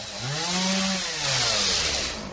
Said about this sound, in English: Buzzsaws working hard. The storm that raced through the Murray Hill section of Queens uprooted gigantic trees. This one fell on top of a house on 41st Avenue.